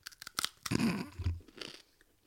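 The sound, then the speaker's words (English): Crunching on crispy pork scratchings during an ASMR taste test: a few sharp, crackly bites followed by a longer burst of chewing with a low thud, fairly loud and with no talking. “I'm just opening mine. I'm having second thoughts. They don't look great. I don't know if I prefer bacon bites.”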